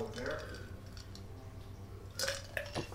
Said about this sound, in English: Wow, something just went across my throat. Excuse me while I take a drink of water.